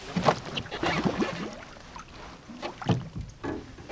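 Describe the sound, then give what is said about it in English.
A small, tipsy, flat-bottomed boat rocks on shallow water with a current as a woman braces her legs against one of its seats, with irregular knocks, creaks and sloshing as the hull shifts, and no voices. “braces her legs against one of the seats of a small, tipsy, flat-bottomed boat.”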